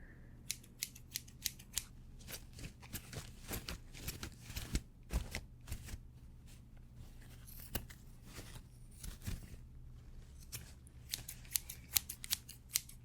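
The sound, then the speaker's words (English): Rapid, repeated scissor snips, crisp, keep going for several seconds in an irregular rhythm over a steady low hum, with no one speaking. “Scissors, scissors, scissors. That's right. Scissors. Snip, snip, snip.”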